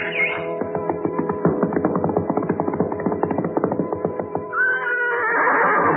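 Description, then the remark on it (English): A black stallion in a remote valley near a rancho lets out a long, loud whinny with a fast quavering trill that rises and falls over several seconds, followed by a brief higher squeal at the end. “There we found a beautiful black stallion.”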